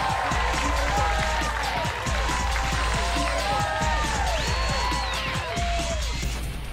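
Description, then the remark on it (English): A crowd claps and cheers loudly and without a break, dense hand-clapping mixed with whoops and shouting voices rising and falling over several seconds. “Everybody clap your hands for Jessica Kirsten.”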